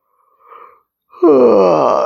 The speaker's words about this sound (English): Alright, let me first yawn and stretch 1 second.